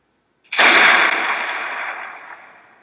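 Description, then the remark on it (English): A single loud gunshot cracks out sharply, then trails off in a lingering echo that fades over a couple of seconds. No voices are heard. “And with that gunshot, we cut to black. There's the slight echo to the gun”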